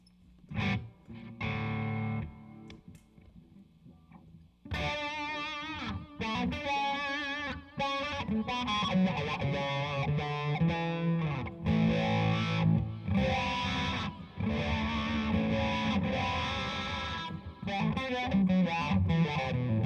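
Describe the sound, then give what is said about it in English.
A distorted electric guitar played through a wah pedal picks out a few sparse notes, then launches into a loud, sustained, gritty riff with swelling, sweeping tone that carries on steadily to the end. “like, did you do distortion on that or no? Oh, sure. Let's do distortion.”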